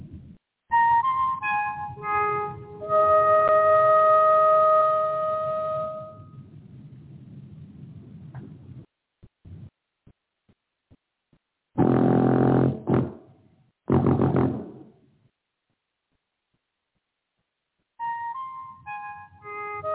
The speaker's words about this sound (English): Everything's ready. You're on the dark side of the moon. Play the five tones.